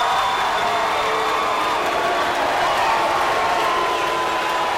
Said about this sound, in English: Suddenly, it was like, at last, it's on. There was a half minute of cheering, followed by a half minute of booing, and nothing had happened yet.